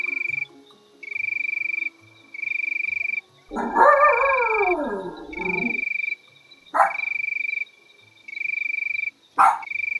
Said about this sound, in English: If you count the number of cricket chirps in 15 seconds and add 37, it'll give you the temperature. So we're going to try that right now. Here are some cricket chirps.